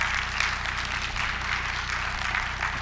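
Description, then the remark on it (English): A church crowd claps steadily for the worship team, a dense, even patter of many hands that holds at a constant moderate level throughout, with a low steady hum underneath and no voices standing out. “Don't clap too hard because they're going to believe it and their heads is going to get big.”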